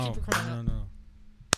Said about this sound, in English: Wait. You can see that's the clap right there.